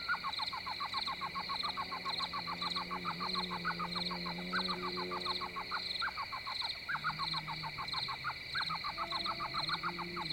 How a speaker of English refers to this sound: I soon discover an elf owl, yelping from the sea of mesquite trees that populate the flats along the river. Only 6 inches in height and North America's smallest owl, this endearing species is commonly heard in the Cottonwood Campground area.